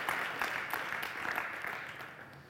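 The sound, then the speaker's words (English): An audience claps together in a steady, dense burst of applause, many hands blending into a continuous patter that holds at an even, moderate level for a couple of seconds with no voices. “That was a very failed attempt at clapping. I just, okay, come on. You can do that over.”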